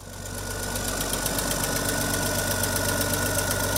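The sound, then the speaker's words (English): An old red farm tractor from the 1960s, a big tractor of its era once used for plowing and heavy tillage, its engine idling steadily, a low, rhythmic knocking chug with mechanical rattle that swells slightly at the start and then holds constant, with no voices. “In the 60s there, these were the big tractors of that era.”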